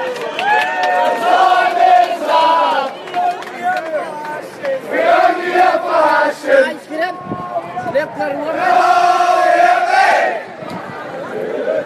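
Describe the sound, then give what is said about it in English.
A large crowd of South African fans at Newlands cricket stadium chants and cheers in three loud rising waves of voices singing together, with a brief lull of scattered shouting between each surge. “Instead, we should be talking about the fantastic chance to be a South African fan in a cricket stadium.”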